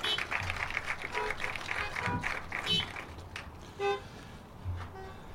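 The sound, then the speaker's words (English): A chorus of car horns honks together as a church audience honks instead of saying amen, long blasts and short toots overlapping for several seconds with a faint background murmur. “How about instead of saying amen, we just honk our horns?”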